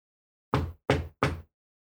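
Three firm knocks on a door in a quick, even rhythm, each a short, hard thud that fades fast, followed by silence. No voices.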